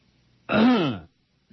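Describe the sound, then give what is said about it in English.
A single loud, phlegmy throat clearing, lasting about half a second with a gravelly, voiced rasp that drops in pitch, surrounded by near silence. “I need some good expectorant.”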